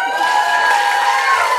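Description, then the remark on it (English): A crowd bursts into loud, steady cheering and applause for JCC Manhattan, with whoops and high shouts riding over a dense wash of clapping that holds for the whole moment. “And I raise you, if I may get a big heart, round of applause, JCC Manhattan.”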